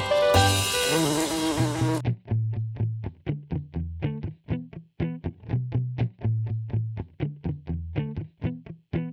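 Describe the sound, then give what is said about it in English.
A distorted, wasp-like buzzing effect opens with a dense electronic burst, then settles into a rapid, steady pulsing buzz with a low droning hum beneath, loud with no voices. “I'd rather have a madman wasp, 'cause he plays all the music.”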